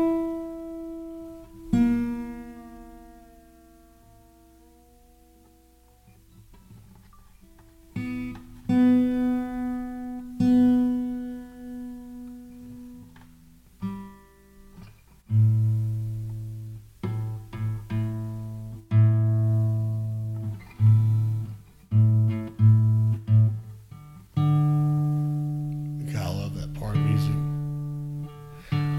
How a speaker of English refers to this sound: Watching him turn his keys, strumming with his right hand, turning the keys of the guitar, acoustic guitar with his left, and it's almost like a duck caller.